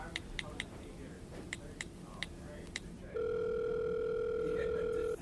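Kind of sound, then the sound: signal or alarm, telephone dial tone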